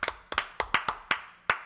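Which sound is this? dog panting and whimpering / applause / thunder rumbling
applause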